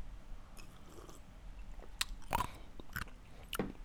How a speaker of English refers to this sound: Sorry, I'm chewing in your ear. Does it sound like ASMR mukbang and shit?